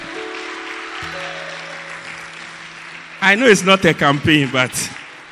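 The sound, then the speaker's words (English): A church audience claps in a dense, continuous wash of applause over sustained low keyboard tones as the service is brought to a close; a few seconds in, a loud voice begins speaking over the clapping. “Oh, if you are clapping, I know clapping is not a campaign,”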